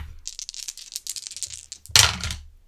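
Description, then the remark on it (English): Dice rattle and clatter in a rapid, irregular run of small clicks for about two seconds, ending in a louder, sharper burst as they tumble to a stop, with no voices. The roll includes two additional dice and lands on a 5 and two 4s. “So, howdy, two additional dice.”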